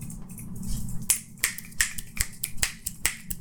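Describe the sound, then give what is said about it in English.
A quick, slightly uneven run of more than ten sharp finger snaps, several in a row with a few overlapping, crisp and bright over a low steady hum, with no talking. “10 snaps.”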